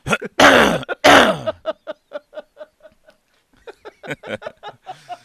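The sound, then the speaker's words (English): A person speaking on a broadcast clears their throat with two loud, harsh bursts, followed by a string of softer, rhythmic guttural hums and little vocal grunts, then a few more throaty noises trailing off near the end. “Sorry, is that going over the air when I clear my throat like that?”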